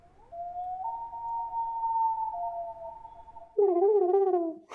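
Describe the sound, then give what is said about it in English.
Someone imitates a loon call with a long, steady whistled wail that climbs slightly. It ends in a louder, lower, wavering hoot with a throaty edge. No words are spoken. “Not with a bang, but with a whimper or an A loon call, a silent loon call.”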